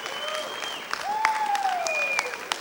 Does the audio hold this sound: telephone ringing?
no